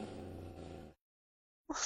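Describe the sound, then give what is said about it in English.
A dog growls, a low, rough rumble held for about a second, then falls silent before a short, sharp burst of noise at the very end. “I don't know how this reminded me when your dog just growled.”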